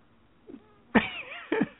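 A cat meows a few times: a faint short chirp, then a louder drawn-out meow with a bending pitch, followed by a brief third cry, with no talking.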